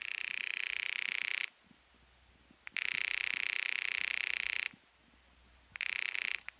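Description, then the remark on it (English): A telephone rings in loud, buzzy bursts, three rings separated by short silent pauses in a steady on-off rhythm, with no voices. “Your number's ringing now.”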